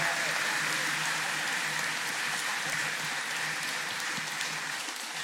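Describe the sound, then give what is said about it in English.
An audience gives the children another round of applause for leading worship that morning, a dense, steady round that holds at an even level for about five seconds, the many hand claps blurring into a continuous patter with no voices over it. “And let's give our kids another round of applause for leading us in worship this morning.”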